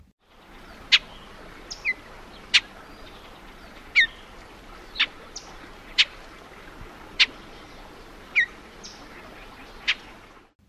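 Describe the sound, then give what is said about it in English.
A Bullock's oriole gives a series of sharp, clipped call notes, about one per second with slightly uneven spacing, each brief and bright against a faint steady background hiss. “Bullock's oriole.”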